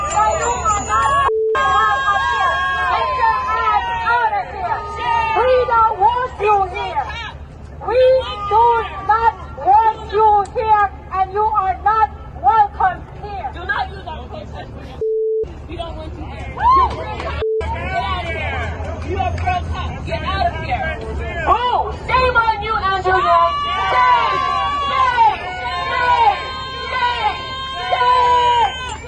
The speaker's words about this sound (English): Andrew Yang shows up in New York to a Chauvin's a Jerk and... Dante Wright should be alive rally. Exactly, or a live rally. And the crowd turns on him. My guy, Andrew Yang, Yang Gang, the crowd turns on Andrew Yang.